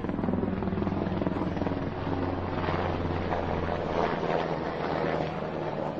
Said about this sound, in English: What is this now? That's menacing. The jackbooted helicopters. Jeez Louise. Wow. I don't even see. Oh, there it is. It's so loud.